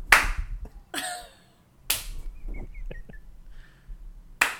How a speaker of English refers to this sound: If I can just find one hand, like one slow clap.